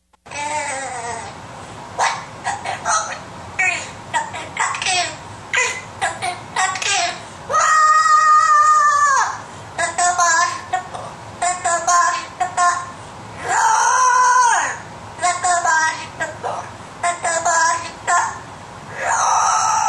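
A bird belts out a rock song in raspy, screeching bursts, with choppy phrases broken by a few long, wailing held notes. It's loud and continuous, and nobody talks over it.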